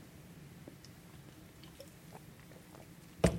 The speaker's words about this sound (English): Got your drink? I'm going to have a little sip here, wait there.